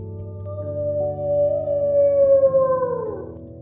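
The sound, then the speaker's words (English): A long, eerie wail from a black and white dragon-like creature flying in the skies in the distance, carried on the wind, holds a steady tone, then slowly slides downward in pitch over a low, layered droning background with no voices. “Kitty heard its faraway wail on the wind.”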